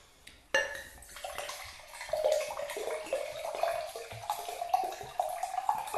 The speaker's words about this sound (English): I'll just pause for pouring ASMR.